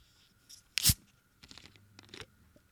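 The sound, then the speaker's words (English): A zero-sugar drink can cracks open with one sharp, loud pop-hiss, followed by a second of softer scraping and fizzing rustles over a quiet background. “A less satisfying open.”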